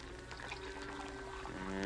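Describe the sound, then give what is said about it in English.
Coffee pours steadily into a cup in one continuous stream, its hollow ringing tone shifting as the cup fills and growing slightly louder toward the end. “Pour me another cup of coffee.”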